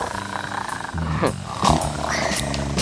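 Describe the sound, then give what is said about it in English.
A domestic cat, the speaker's pet, vocalizes: a low, drawn-out growling yowl with a few rising, wavering pitches, continuing without a break for a few seconds. “There go my cat.”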